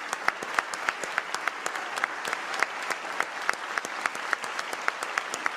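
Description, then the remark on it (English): Steady applause from an audience of members and guests of the 103rd General Assembly as Governor J.B. Pritzker is introduced, dense overlapping claps with sharp individual hand strikes standing out, sustained at an even level throughout with no voices rising above it. “I guess that's the clapping sign.”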